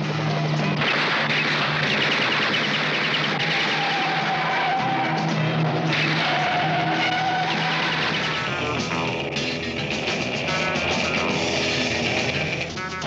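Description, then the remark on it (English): A racing sports car roars, engine revving in rising and falling sweeps while tires squeal and skid, a loud, continuous blur of motor noise and screeching rubber with no voices. “Master sports car racer.”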